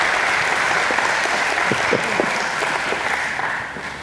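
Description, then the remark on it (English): A crowd claps steadily to thank people heading back to their seats, a dense, even wash of applause that stays strong for several seconds before easing off slightly at the end, with a few faint voices mixed in. “If y'all would thank them as they're heading back to their seats.”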